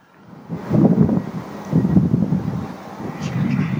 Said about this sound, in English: Fuck, it's windy.